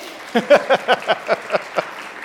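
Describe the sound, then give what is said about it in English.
An audience at a live song performance claps in a steady rhythm, about eight even claps in quick succession, moderately loud, with no talking over them. “Yeah, you can clap.”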